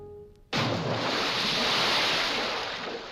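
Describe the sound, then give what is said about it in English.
Harbor water washing against the hull of a cargo ship in Boston Harbor in 1774, in darkness: after a half-second of low hum, a loud rush of surging water breaks in and keeps churning steadily, with no voices. “Boston Harbor, 1774. Two figures huddle on the deck of a cargo ship, there in the darkness.”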